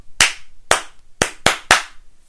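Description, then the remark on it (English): Five crisp hand claps clapping back a rhythm pattern: two evenly spaced claps followed by three quicker ones, sharp and fairly loud with no voices. “And then can you clap it back?”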